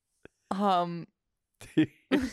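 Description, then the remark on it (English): A dog snores loudly: one long, droning, almost tonal snore, then after a pause a couple of shorter, rougher snorts, all without any talking. “Our dog is snoring just... Cartoonishly.”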